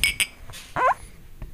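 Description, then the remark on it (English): Two quick, bright clinks of Jaeger bomb glasses tapped together in a toast, followed a moment later by a brief high, wavering squeal and then quiet. “We got a Jaeger bomb. We're going to do it. Cheers.”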